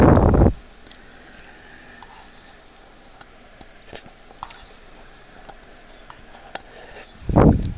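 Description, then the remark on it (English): Light clinks and scrapes of cutlery against a dish as someone eats noodles, with soft slurping and squishy eating sounds, quiet and intermittent, framed by brief louder bursts at the start and end. “So, I'm just finishing up my noodles here, and it was really good.”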